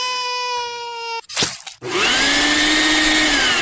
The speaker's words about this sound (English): It's been flushed. He flushed them right down the toilet.